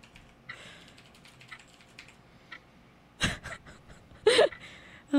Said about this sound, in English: Yes, the clicking of the little clock. This is Hot Seconds.